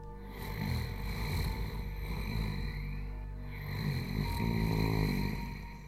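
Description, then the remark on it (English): Low, rumbling snoring or growling with a rasp, coming from a grandmother's room at night, rising and falling in slow, drawn-out breaths with no pauses, fairly steady and moderately loud, with no talking. “Somewhat like growling or snoring, which I'm not sure which one, coming from Grandma's room.”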